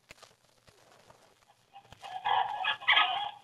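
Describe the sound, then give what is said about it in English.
Chickens cluck and squawk, quiet at first, then breaking into a loud, busy flurry of overlapping calls toward the end. No one speaks. “I'll go feed the chickens.”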